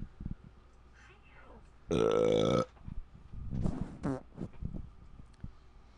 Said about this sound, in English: What the fuck was that? You farted.